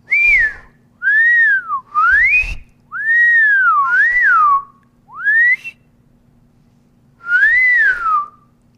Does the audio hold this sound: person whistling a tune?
yes